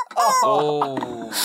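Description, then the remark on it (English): A rubber toy chicken prop, held in hand, lets out one loud, drawn-out squawk, its pitch wavering before it ends in a breathy, hissing wheeze of air. “I'm holding the chicken in hand.”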